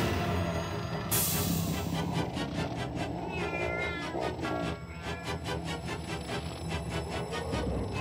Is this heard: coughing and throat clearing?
no